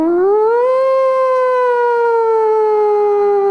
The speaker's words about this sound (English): Song starts off with a siren. It's so creative.